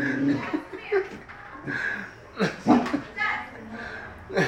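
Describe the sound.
A dog lets out a few short, sharp, loud barks in quick bursts, mixed in with a person talking and some light laughter.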